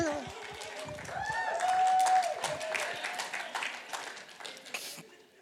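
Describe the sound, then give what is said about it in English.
A crowd applauds steadily with dense, rapid clapping, swelling in the middle and tapering off near the end, with a few whistles and cheering voices mixed in. “You can clap a little bit louder.”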